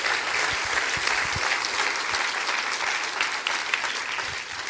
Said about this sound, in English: All right, clap your hands real big. Yes, sir.